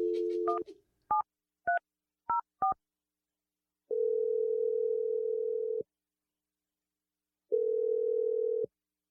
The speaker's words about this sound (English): I'm going to dial the phone. Yes, I was right. Take that energy, and I'm dialing a number right now.